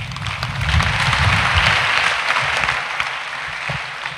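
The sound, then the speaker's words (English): A church audience claps for Jesus during a sermon, a dense, steady wash of applause that swells and holds for several seconds, then begins to thin out toward the end. “You see, as you are clapping, I can see people waking up from sleep.”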